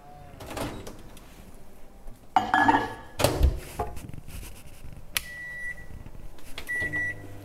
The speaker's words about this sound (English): Around 80 grams of milk into the same bowl with the chocolate as well. Then I'm just gonna pop this into the microwave just to melt. Just gonna put it in for a minute.